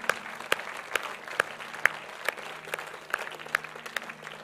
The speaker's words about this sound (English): Would you stand? Can we give a clap offering to our King? He's worthy.